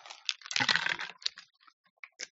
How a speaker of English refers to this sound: Instead, I'm gonna take a sip of this here tea.